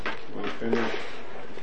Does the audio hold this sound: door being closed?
yes